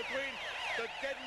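A wailing siren sweeps up and down in pitch in a steady repeating cycle, with rising and falling tones layered together, sounding continuously at moderate loudness with faint background noise.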